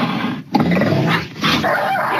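A cougar (mountain lion) growls and snarls fiercely while attacking a family dog, a 3-year-old giant black schnauzer, in Laverne, caught on camera; loud, with rough continuous snarling broken by a brief gap and scuffling noise.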